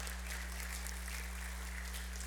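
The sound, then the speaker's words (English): A church audience applauds to celebrate a baby's birth, many hands clapping at once in a dense, continuous patter that holds at an even, moderate level over a low hum. “And so, yeah, we can clap for that.”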